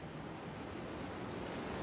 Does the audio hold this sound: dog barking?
no